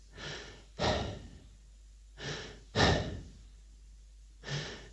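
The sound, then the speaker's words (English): A person breathes heavily and loudly on centre court at Wimbledon during a tennis match, with harsh paired in-and-out breaths repeating about every two seconds, a panting, almost dog-like sound. No one speaks. “It sounds like there's a dog panting in the background, and no one could work out what it was”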